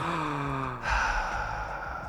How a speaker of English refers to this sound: Can you hear me breathing?